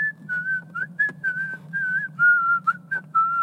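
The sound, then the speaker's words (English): Someone whistles a short, steady tune, the whistling part from the film Kill Bill, the notes gliding in a slow melodic phrase over a faint low hum, with no talking. “And so I have that whistling part just like down.”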